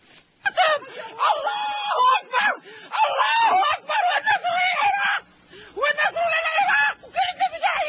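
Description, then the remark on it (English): An Iraqi woman in a film clip wails and screams in anguish over family members who were killed, her cries rising and breaking in long, strained bursts with brief gaps, loud, sounding like raw grief. “Screaming, the, this is from Fahrenheit 9/11. Right, Iraqi about woman.”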